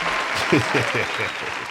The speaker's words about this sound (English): Matter of fact, let's clap that up, man. Clap. Salute Spotify, man. Let's clap that up.